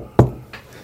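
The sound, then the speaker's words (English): Two knocks on a door, a loud, sharp first rap followed by a softer second one, with a brief hollow ring after each and no voices. “You know, you've seen people walking around that come knocking at your door.”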